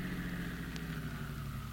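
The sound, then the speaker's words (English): A car engine idles after the car is stopped, with a steady, low rumbling hum that holds even throughout, quiet, with no voices. “Now stop your car.”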